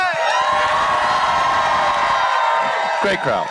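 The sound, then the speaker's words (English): A live crowd in Asbury Park, New Jersey cheers and whoops loudly and continuously, with a sustained high shrieking whoop riding over the roar, then a few rising shouts near the end. “Asbury Park, New Jersey, make some noise.”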